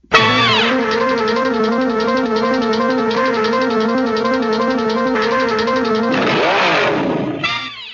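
A race car engine roars loudly and steadily at high revs for several seconds, with its pitch sweeping up and down near the end as the car accelerates.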